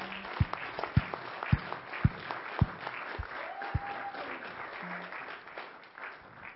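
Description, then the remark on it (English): A crowd applauds steadily, cheering little kids as they leave for their class, with a few loud, evenly spaced thumps early on and a brief whoop rising over the clapping midway through. “So let's cheer our kids as they go.”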